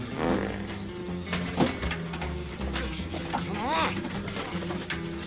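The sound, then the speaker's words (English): A buzzy, sputtering fart rises and falls in pitch, set against a dense, busy backdrop of clattering noise and muffled voices, moderately loud. “Now remember, you only have so many farts inside of your system.”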